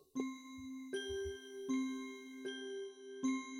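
A small bell rings five times at a steady, unhurried pace, each clear metallic strike ringing on and overlapping the next. It's fairly loud, with no voices.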